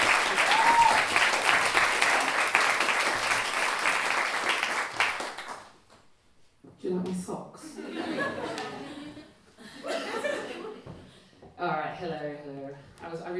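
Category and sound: crowd, audience round of applause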